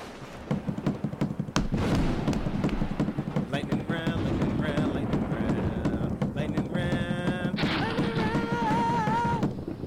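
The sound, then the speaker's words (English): Rapid, repeated thumping of someone pounding on a table continues loudly and unevenly through the whole stretch, with excited voices and some tonal, musical sounds layered over it. “Break the table. It's my fucking table.”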